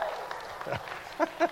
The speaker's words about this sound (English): How about a round of applause for my lovely assistant?